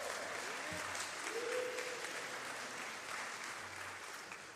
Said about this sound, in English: I got applause on the first time up. That's awesome.